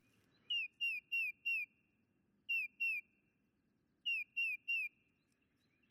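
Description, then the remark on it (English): A bird sings short, repeated whistled notes in clusters of two to four, clear, over a faint low rumble of outdoor ambience with no voices, in the woods of New Hampshire in fall, in September. “The bittersweet reprise of birdsong in fall”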